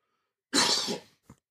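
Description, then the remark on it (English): A single harsh, forceful cough, followed a moment later by a brief, softer throat sound; no one speaks. “Sorry, I had a cough.”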